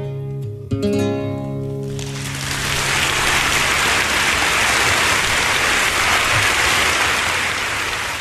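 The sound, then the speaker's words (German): A song's final sustained notes fade out as a large crowd bursts into loud, dense applause that swells and continues steadily, a thick wash of clapping with no voices. “Der riesige Applaus hat auch ein bisschen dir gut gesoffen.”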